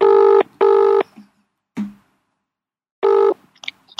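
telephone dialing and ringing

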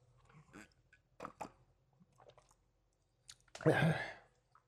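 sipping a drink

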